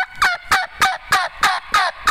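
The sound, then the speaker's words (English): Seven raspy hen turkey yelps imitated on a dry mouth call, evenly spaced in a steady, quick rhythm, loud with no talking. “You can imitate that on a mouth call a little bit slower, a little bit deeper in tone, where a hen's, Jake's, and I apologize, my throat's so dry, and the calls are dry.”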